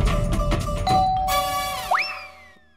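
A home doorbell chimes at night with bright, ringing electronic tones that overlap and linger, ending in a quick upward-sliding note that fades away. No one speaks.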